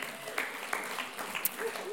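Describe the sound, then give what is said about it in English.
An audience at New Life church claps steadily in a sustained round of applause for themselves, a dense patter of many hands, with faint voices mixed in beneath the clapping. “You can give yourselves a round of applause.”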